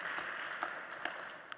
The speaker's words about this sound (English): So give yourselves a big round of applause that we have maintained 33 years together.